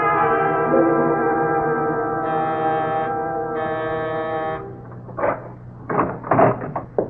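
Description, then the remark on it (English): A doorbell gives a long, steady electric buzz lasting several seconds, its tone shifting slightly midway, followed by a few short clunks and rattles as a door is unlatched and opened. “I'm sorry to ring your bell this late.”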